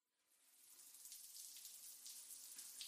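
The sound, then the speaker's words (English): Running shower water hisses steadily after quickly swelling in over the first second, a dense, bright spray that stays constant with no voices. “You are taking a shower.”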